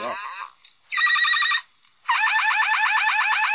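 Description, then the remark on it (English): A 1986 Galvatron toy figure with three settings, powered by a 9-volt battery, plays loud electronic sound effects: a brief falling tone, a short buzzy burst, then a longer rapid warbling siren-like effect, with short pauses between them and no voices. “I brought audio aids, and I put a 9-volt in Galvatron here. He has 3 settings, if you can believe it or not.”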